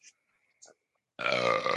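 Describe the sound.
A loud belch erupts after a couple of faint clicks, its rough, voiced rumble lasting over half a second with a rich harmonic buzz before cutting off.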